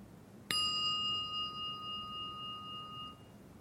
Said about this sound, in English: And I'm going to ring the bell, and I just want you to, like, just hear the bell. Aim your attention and connect with this sound. I'll do it one more time.